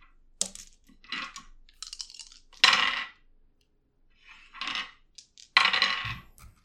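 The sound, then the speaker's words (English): Dice rattle and clatter across a hard surface in several quick bursts with short pauses between, fairly loud, with no voices. “Rolling some dice here. I will be done shortly, but it is rather important that I finish.”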